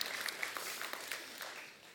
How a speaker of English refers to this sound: Appreciate it. Can you give her a hand of applause, please?